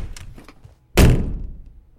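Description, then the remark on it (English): A door slams shut with one loud, heavy bang, its boom fading over about a second, after a few faint knocks and shuffles just before. “Schneider points at the door. Out! Get out!”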